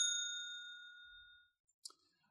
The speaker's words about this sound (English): So I'm going to hit the bell.